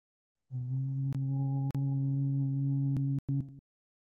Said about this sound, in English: We'll chant Om once. You can join in the chant, or you can just hum along, or just feel the vibration.